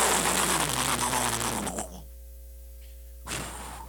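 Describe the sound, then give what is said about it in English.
A preacher's voice imitates the biblical rushing mighty wind with a loud, breathy whooshing hiss lasting about two seconds, then a short silence before a second, softer whoosh begins. “I wish I could sound more like wind.”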